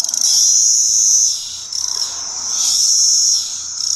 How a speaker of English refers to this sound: And those are the males. The males are out looking for cicada business.